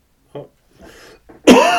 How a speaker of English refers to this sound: Didn't cough at the wall. Sorry, or into my armpit. Or into your elbow.